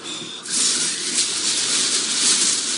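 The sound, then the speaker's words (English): A paper-wrapped package, an early Christmas present, being unwrapped: a steady, loud rustling and crinkling of paper starts after a brief quiet moment and continues without pause, with no talking. “Let's open it up and see what's inside.”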